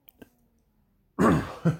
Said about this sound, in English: My cat, excuse me. I coughed, of course.